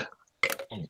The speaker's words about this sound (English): I had to sneeze.